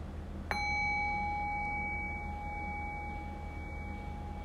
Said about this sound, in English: And so in the next breath or two, I'll ring the sound of the bell again. And the invitation then once again is to rest awareness on the fading bell. Allow the bell to guide your awareness into silence.